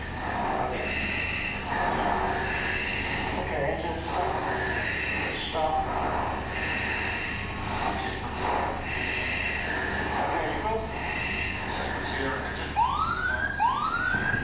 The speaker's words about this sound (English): It was a British constructed aircraft, so it's got that British accent in the automated voice system. They've lost an engine. They're trying to pull this plane around after it tried to take off. The automated voice thinks they're trying to land.